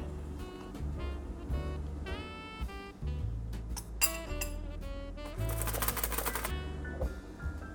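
A spoon scrapes and taps against a glass jar as 2/3 cup of cocoa powder is spooned in as a layer, quick light clicks and clinks scattered over steady background music, with a busier burst of scraping near the end.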